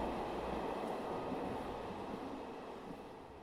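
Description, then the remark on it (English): A train rolls steadily along the rails, a continuous broad rumble and hiss that stays close and fairly loud, easing off just slightly toward the end, with no voices. “You two, drop Nimbus, get on the train.”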